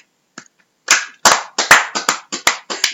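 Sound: hand clapping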